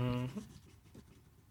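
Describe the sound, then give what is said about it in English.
A handful of pencils held in someone's hands rattles and scrapes together in faint, scattered clicks, following a brief hummed voice at the start. “There's 10,000 pencils you're holding”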